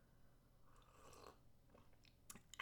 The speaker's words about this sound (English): I'm going to take a sip of tea and I'm not even going to edit this out because I feel like it's just going to add to the flavor, okay?